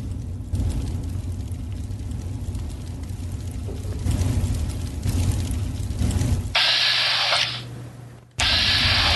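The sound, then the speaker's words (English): Rapid, sustained submachine gun fire from a video game, aimed at a raider on top of a railroad car, loud and harsh, in a long burst and then a second burst after a brief pause, over a steady low rumble of background noise. “Bad chance to get him with my submachine gun.”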